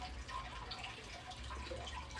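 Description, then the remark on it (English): Someone drinks water, with soft liquid sloshing and faint swallowing sounds running steadily through the short, quiet stretch. No one speaks. “Sorry, just had to drink some water.”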